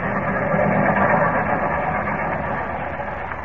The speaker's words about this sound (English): Just let's move over to Platform 6. I'll tell you all about it. The 941, you'll see. 941 arriving on track 6. 941 on track 6. 941 arriving on track 6.